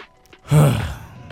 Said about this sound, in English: You gotta do that. You gotta breathe in and out. Them breathing techniques help you.